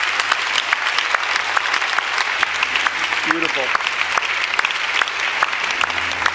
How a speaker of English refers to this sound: Can we just give a round of applause and thank God for those who come to heaven?